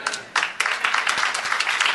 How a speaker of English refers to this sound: Is that it? Is that all the clapping?